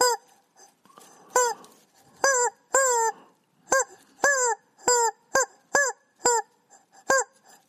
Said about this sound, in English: Let's sign out with a chicken, shall we?